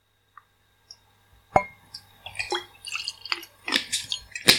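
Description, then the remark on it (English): About 5 ml of gin is poured into a small measuring shot glass: a couple of faint ticks, then a short run of trickling, dripping splashes with bright glassy clinks. “So I've poured, just a little sip. What's that? That's about 5 mils in my little measuring shot glass here.”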